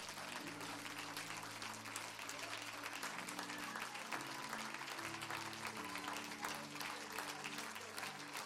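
Sustained applause from a large worship audience giving the Lord a hand clap of praise, dense steady clapping for several seconds, with sustained low organ-like tones underneath and faint voices mixed in.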